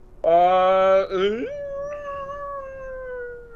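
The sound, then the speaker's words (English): A person lets out a loud, strained werewolf-style howl, a harsh sustained cry that drops and trails off into a long, thinner wail. “Is that your werewolf kind of howl”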